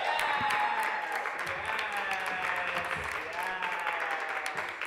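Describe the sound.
An audience claps steadily and loudly in a dense wash of overlapping hand claps, with some crowd chatter and voices mixed in throughout.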